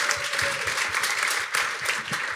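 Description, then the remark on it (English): A crowd claps steadily, the dense patter of many hands forming a loud, continuous wash of applause with no voices over it. “Can we give him a huge round of applause?”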